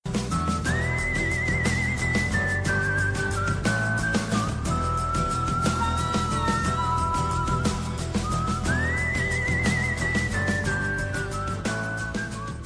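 A Western-style OverClocked ReMix arrangement of a theme from the video game Final Fantasy VI, used as a theme song, plays steadily, a high whistled melody gliding over strummed guitar and a driving rhythm section at a constant, full volume, with no voices.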